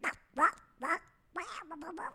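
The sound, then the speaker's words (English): A voice imitates an angry cartoon duck: three short, raspy quacking bursts followed by a longer garbled squawking run, fairly loud, with no ordinary speech. “So it's basically like an angry Donald Duck.”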